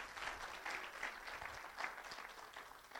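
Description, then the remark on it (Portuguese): An audience applauding God steadily, a dense wash of many hands clapping at once with no pauses, at a fairly loud, even level throughout. “Aplauda a Deus que Ele merece demais, sério.”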